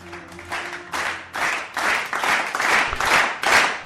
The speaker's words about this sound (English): We are back! And the crowd is going wild! Yes, yes, yes, Superman, Superman.